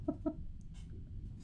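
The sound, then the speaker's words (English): A person imitates clucking birds with two quick clucks in rapid succession, then the voice stops and only a low background rumble and faint rustles remain. “And you hear birds like”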